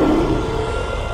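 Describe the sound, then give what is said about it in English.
A deep, rumbling monster roar sound effect in a radio advert for Selco Plumbing and Heating Supplies, sustained steadily for just over a second, dense and gravelly with heavy low growl and no speech over it. “There's a monster in the basement.”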